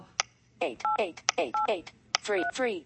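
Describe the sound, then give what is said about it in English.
Touch tones from a touchscreen phone keypad beep several times in quick succession, each steady two-note chirp paired with a brief spoken voice reading out the digit, such as "8", with sharp tap clicks mixed in. “And you hear it did the touch tone and it said 8.”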